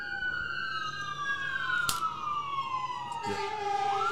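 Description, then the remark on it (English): An emergency vehicle siren holds a long, steady wail that slowly glides downward in pitch, fairly loud over a rumbling street background, with a couple of brief sharp knocks along the way. “I can hear the sirens.”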